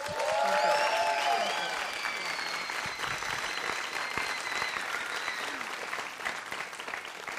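A crowd claps steadily for several seconds to thank a VBS leader for her leadership this year. Loud whistles cut through near the start, and cheering voices mix into the sustained applause as it slowly eases off.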